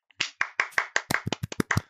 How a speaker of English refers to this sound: You want to clap with me?